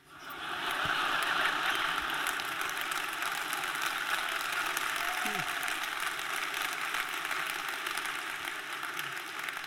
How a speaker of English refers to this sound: Assume you're clapping because I have self-control.